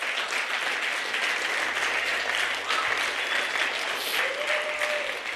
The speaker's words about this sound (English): Good evening, guys. Before I tell you who I am, I just want to say, can we just get a round of applause